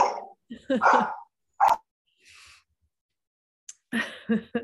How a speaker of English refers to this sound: Luke, don't bark. Sorry, my dog is about to freak out.